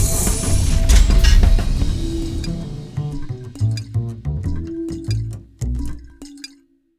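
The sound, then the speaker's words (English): A heavy lab door grinds and rumbles, then creaks open in a series of drawn-out, groaning squeaks with faint metallic clinks, fairly loud, ending abruptly. “Just open the door, please.”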